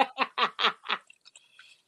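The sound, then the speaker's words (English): Wet slurping of a jello shot: five quick, loud sucking pulls in an even rhythm, followed by a few faint smacking bits as it trails off. “One thing I don't like about Jello shots, you can't always get all of it in one session. Oh yeah, you got to slurp that.”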